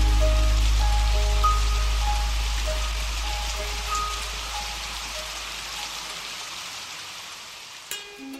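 Steady rain falls in a broad, continuous hiss, with occasional pattering drops and a low rumble underneath that fades out toward the end. No voices are heard.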